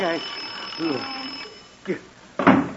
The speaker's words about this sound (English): that was just the alarm on your clock. It happened to go off.